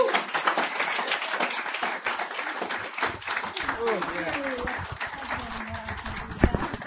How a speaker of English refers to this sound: Please clap the poet to the stage.